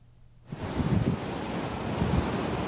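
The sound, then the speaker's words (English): Steady outdoor water and wind ambience at a riverside in New Taipei rises abruptly after a quiet start, a broad rushing wash with gusty low rumbles, continuous and moderately loud, with no voices. “Four women stand by a riverside.”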